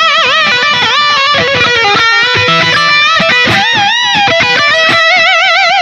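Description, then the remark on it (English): A heavily distorted metal electric guitar with a Floyd Rose tremolo system (whammy bar) plays loud sustained notes and chords, their pitch wavering and bending in swoops and wobbles, with choppy picked bursts in between and no talking. “But the other thing this guitar had, which I was taught to hate, is the Floyd Rose tremolo system.”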